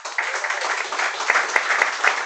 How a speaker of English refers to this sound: Wow, what a studio audience we have. Guys, give yourself a round of applause.